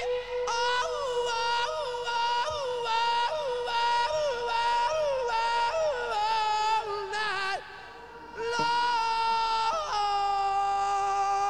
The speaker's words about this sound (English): Even that kind of the backwards echo kind of does give it sort of a creepy, little darker feel than you would normally get without it.